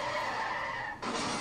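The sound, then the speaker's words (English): A car's tires skid and squeal loudly for over a second, a harsh sustained screech that briefly dips and then surges into a broader, rougher scrape. No voices. “You're careening towards you, hit the brakes.”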